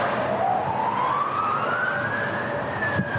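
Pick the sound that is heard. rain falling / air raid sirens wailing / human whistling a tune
air raid sirens wailing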